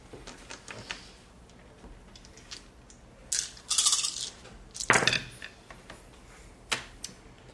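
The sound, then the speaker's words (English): Three yellow dice and a green die clatter and tumble across a hard surface in a tabletop game roll against a melee attack, a few quick bursts of sharp, bright clicks, with a louder rattle in the middle and scattered light taps around it, no voices. “Go ahead and roll. I'll make another attempt just in case this one fails too.”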